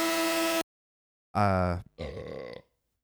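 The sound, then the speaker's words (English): A loud, low, throaty burp in two parts, a resonant half-second belch followed by a rougher, gravelly one, after a short steady buzzing tone and a pause of silence. “Got distracted by your burp.”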